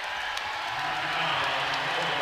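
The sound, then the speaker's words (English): A large basketball arena crowd of Middle Tennessee fans gives a Bronx cheer after a foul is called in the fourth quarter against Southern Illinois, roaring in a steady, dense wash of noise, with a low booing drone swelling through the middle of the outburst. “And you hear the Bronx cheer from the Middle Tennessee crowd.”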